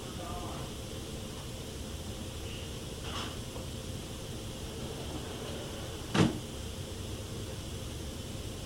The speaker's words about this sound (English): You hear that closet door in the room where the recorder was closed after we left the house. In my opinion, that's one of the best pieces we've ever caught.